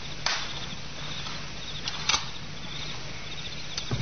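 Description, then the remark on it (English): A garden gate shuts with a soft click, followed by a few sparse, quiet footsteps of a man and a woman that fade away over a steady background of night insects and low hum. “A garden gate shut softly, and footsteps, a man and a woman, fade away into the sounds of the night.”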